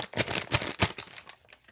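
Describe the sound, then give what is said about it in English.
A piece of paper crinkles and crumples in a hand, a quick series of dry rustling bursts that fade toward the end, fairly quiet with no talking. “Right, that's a piece of paper.”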